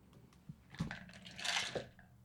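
Dice clatter and rattle inside a dice box, a quick flurry of sharp clicks and knocks building to a louder rolling shake before settling, with no talking.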